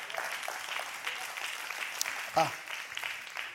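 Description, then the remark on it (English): An audience claps steadily, a dense, crackling wash of many hands that holds at an even level throughout, with a brief voice rising out of it near the end. “Yeah, you gonna hear clap there?”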